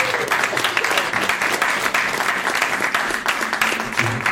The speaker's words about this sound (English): So big stakes up for grabs in that contest tomorrow, ladies and gentlemen. Give these gentlemen a round of applause. Thank you for your support here.